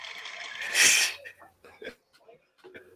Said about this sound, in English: So then I grabbed the closest thing to me, and it happens to be the dustiest, too. So start sneezing away.